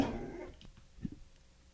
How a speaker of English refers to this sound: Goddamn dogs.